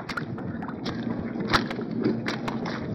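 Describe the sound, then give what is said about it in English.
Steady churning water with irregular splashes as American soldiers carrying 60-pound packs wade across a shallow, rock- and ice-bedded river east of Seoul, several sharper sloshes standing out above a continuous rushing hiss, with no voices. “The water you hear is no sound effect. These are the sounds of American doughfoots, with 60-pound packs on their back, wading across the shallow rock and ice-bedded river that winning armies have crossed four times in this 10 months of war.”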